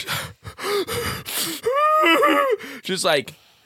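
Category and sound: vocal imitation, imitated heavy panicked breathing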